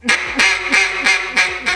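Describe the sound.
A person imitates consecutive duck quacks with the voice: a quick run of about six, evenly spaced and loud, each a short nasal burst in a steady rhythm with no talking in between.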